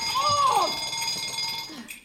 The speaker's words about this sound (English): Bell? Who started that bell?